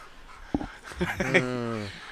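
A dog whimpers, starting with breathy panting puffs and ending in a drawn-out, whiny cry that wavers and fades, all within about two seconds.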